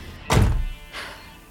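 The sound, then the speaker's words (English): A car door shuts as someone gets out of a car stopped in the middle of a tunnel: one heavy, low thunk that rings off briefly, followed moments later by a softer, hissy rustle. No one speaks. “Shit, someone's getting out.”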